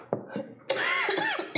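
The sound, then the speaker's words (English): A short run of harsh coughs: two quick hacks, then a longer raspy, strained coughing fit, and one more sharp cough at the end. “I'm not sick, I just can't stop coughing.”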